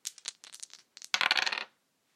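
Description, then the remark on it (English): Dice clatter across a hard surface: a few quick, light clicks, then a denser burst of bright rattling that stops abruptly, with no voices. Two dice are rolled, landing on a 1 and a 6 for a total of 7. “I rolled a 1 and a 6, so that's a 7.”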